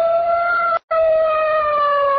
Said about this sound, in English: All right, the alarm's been sounded, but Brannigan and his boys are a long way from the Dollar Delivery building by now.